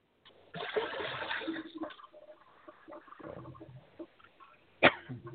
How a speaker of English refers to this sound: I hear water. No wonder my bladder's getting mad at me. I heard water.